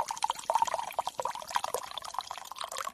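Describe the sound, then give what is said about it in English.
Liquid pours steadily from a Zojirushi thermos for a few seconds, a continuous gurgling splash with bubbly, sputtering bursts and no voices. “Oh, I've just about finished my thermos here. I don't think I'll make another one.”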